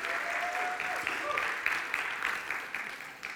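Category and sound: crowd, audience applause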